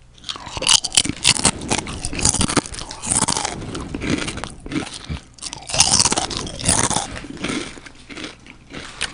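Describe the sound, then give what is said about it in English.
Loud crunching like someone biting into potato chips, a steady run of irregular crackly bites and chewing over several seconds, with no talking. “Hey, nigga, this nigga made a potato chip sound, nigga.”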